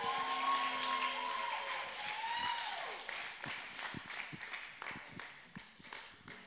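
A crowd applauds a speaker after her message, dense clapping with a few whoops and shouts at first, then thinning out into scattered, uneven claps that fade toward the end.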